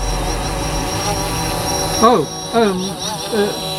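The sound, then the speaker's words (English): Steady, high-pitched buzzing of drones hangs in the air throughout, a dense hornet-like whine that holds constant while a voice briefly speaks over it near the end. “What was that sound? Oh, and the drones. Drones? It sounded like a huge swarm of hornets.”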